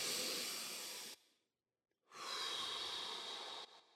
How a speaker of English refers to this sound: Imagine you can breathe in the bottom of your spine and all the way up, and then down and out the bottom, breathing in through your nose, out through pursed lips. So it goes.